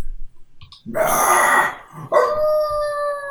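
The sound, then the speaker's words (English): A rough, breathy growl builds up, then gives way to a long, sustained howl that slowly drops in pitch, the howls coming from all around, in the buildings and on the ground. Both are loud, with no talking. “And now you hear howls, but they're all, like, around you.”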